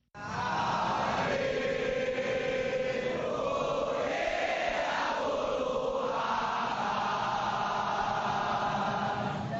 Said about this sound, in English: Is a crowd of mourners singing at a candlelight vigil in Jakarta, Indonesia, for victims of the stampede.